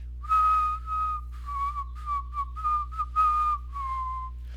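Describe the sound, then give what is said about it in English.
An old man at a workbench whistles a gentle, lullaby-like tune alone, the clear notes gliding in short connected phrases with a steady, unhurried rhythm over a low background hum. “He whistles a tune, sounds like a lullaby or a nursery rhyme.”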